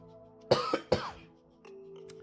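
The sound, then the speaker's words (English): A couple of sharp coughs in quick succession from a person with a scratchy throat, followed by a quieter throaty rasp, with a low steady hum running underneath. “Gotta cough.”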